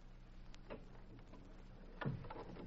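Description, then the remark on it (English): A door being shut, landing with a single soft thud near the end after a few faint clicks and rattles, all fairly quiet with no one speaking. “We better shut this door.”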